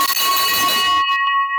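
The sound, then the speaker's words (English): A loud victory bell rings with a bright, sustained metallic tone, a dense clanging burst that fades into a lingering ringing hum, heard alone without any talking. “Here comes the victory bell.”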